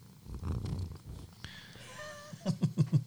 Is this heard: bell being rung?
no